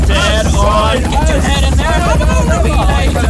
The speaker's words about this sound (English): That bastard helicopter waking everyone in the middle of the night.